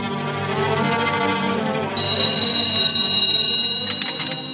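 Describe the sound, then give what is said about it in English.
Partway through, a loud, continuous telephone bell starts ringing and keeps going to the end, preceded by a soft musical passage with no talking. “As soon as we get him into the house, we'll phone Dr. Christian.”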